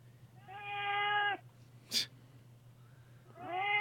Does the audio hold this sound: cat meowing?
yes